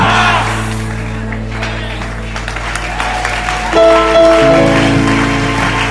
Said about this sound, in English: Are you clapping or you are doing something?